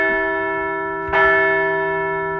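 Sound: bell ringing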